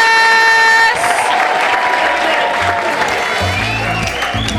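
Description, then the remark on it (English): A live audience in Edinburgh bursts into loud, sustained applause and cheering, a dense wash of clapping that follows a brief horn-like musical sting at the start, with some low musical notes underneath. “Ladies and gentlemen, please give a massive Edinburgh welcome”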